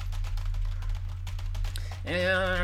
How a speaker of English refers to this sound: let me just randomly generate or quickly type up a prom for us to go off of. Here, you know what? I'm just going to roll my hands around the keyboard.